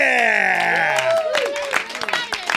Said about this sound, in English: Yeah! Woo! A surround sound applause.